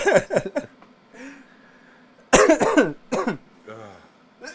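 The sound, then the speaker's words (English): A loud bout of coughing from a person who has just taken dabs: a quick run of three harsh coughs, a pause with quieter throaty breathing, then a heavier burst of several more hacking coughs. “I promise this won't be a coughing episode again.”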